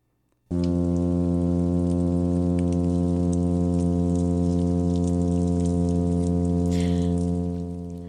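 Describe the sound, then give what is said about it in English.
The deep, steady foghorn-like courtship hum of a male oyster toadfish, made to attract females, starts abruptly and drones on unchanged to the end, loud and rich with overtones, with no talking and no growl standing out. “The hum will go on forever. It sounds like a foghorn, but it isn't.”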